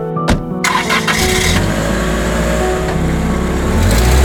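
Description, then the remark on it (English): A car engine cranks with a sharp click and catches, then settles into a loud, steady running rumble that builds slightly as the car pulls away on a dark, snowy Christmas Eve, heading to a garden centre. No voices. “Finally, on Christmas Eve, my mum rushed in from work, and before I could open my mouth, she said, "Get in the car, we're going."”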